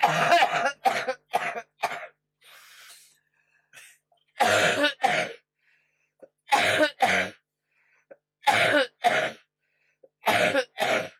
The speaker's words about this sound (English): I'm out of breath, you know. Sound like coughing takes it out of you. You're out of breath. I'm out of breath.